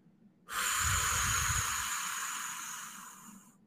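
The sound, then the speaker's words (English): A single forceful, deep cleansing exhale, breathing out as much air as possible with the navel drawn to the spine, a loud breathy rush that starts abruptly and slowly tapers over about three seconds. No one speaks. “Begin by breathing out as much air as you can, bringing your navel to your spine.”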